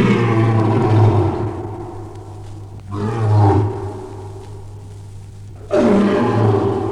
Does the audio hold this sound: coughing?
no